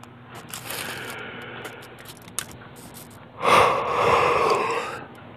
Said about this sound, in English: Another one of them quick yawns because, my days are pretty long.